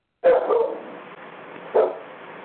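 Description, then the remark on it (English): A pet dog barks twice, a longer first bark followed by a short pause and a second, sharper bark, with no one talking over it. “My dog wants to say a word before we close out.”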